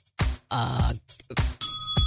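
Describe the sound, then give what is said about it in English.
A bell rings with a bright, sustained metallic tone that hangs and shimmers after the strike, following a few low, groan-like vocal sounds. “I don't know if you should ring the bell on that one because I think there's times.”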